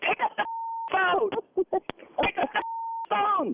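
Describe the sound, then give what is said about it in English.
A telephone rings with two steady electronic tones, each about half a second long, alternating with short bursts of a person talking. “Pick up the phone.”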